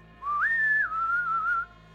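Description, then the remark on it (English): A single clear human whistle lasting about a second and a half, rising sharply then settling into a slightly wavering lower held tone before cutting off. Fairly loud, with no talking. “And as you bring your pistols out to bear on the dogs, you hear a human whistle.”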